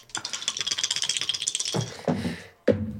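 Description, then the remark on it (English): Two dice rattle rapidly in a cup for about a second and a half, then tumble out with a few clattering bounces and a final sharp knock, fairly loud with no talking. “Wait, was I supposed to add both dice together?”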